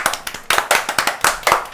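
A quick burst of hand claps, roughly a dozen sharp, close slaps in a fast, slightly uneven rhythm, from what sounds like one or two people, with no talking.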